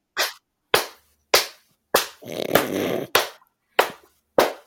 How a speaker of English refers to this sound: No, I was just doing a very lazy clap.